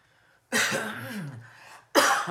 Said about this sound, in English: Excuse me. It's not a dry cough, okay?